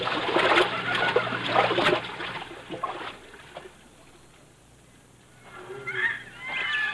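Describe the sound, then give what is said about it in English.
Vigorous splashing of someone wading across a river in water up to the hips fills the first few seconds, then drops to quiet, with a few faint bird calls near the end. “We can cross the river here”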